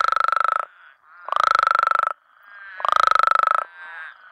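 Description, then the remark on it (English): A male Mexican spadefoot toad gives three loud, croaky, baritone trilled calls, each lasting under a second with short gaps between, clear with no talking. “Instead of making that quacking I described earlier, these males make this kind of baritone trill, but it sounds kind of more croaky.”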